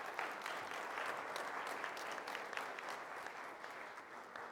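A steady round of audience applause, dense overlapping claps forming a continuous wash of sound that holds at an even level for several seconds, with no voices.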